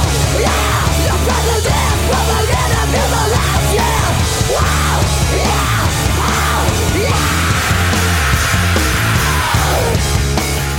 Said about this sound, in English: They do this like scream, and I think it's both of them harmonizing on a scream sometimes. And I always felt like, oh, that sounds cool. I wish they would have just done that for a bunch of other parts.